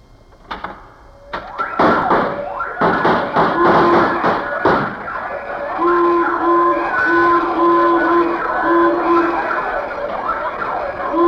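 A vault burglar alarm goes off after a few sharp clicks and thumps, blaring loud wailing, siren-like tones with rapid pulsing beeps that keep sounding steadily to the end.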